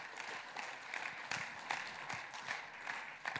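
A church crowd applauds the Lord steadily, with dense clapping filling the space at an even level throughout, a few sharper claps standing out.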